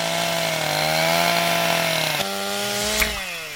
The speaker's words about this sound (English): Do you expect me to believe that the chainsaw just sprouted legs and cut through the transformer all by itself?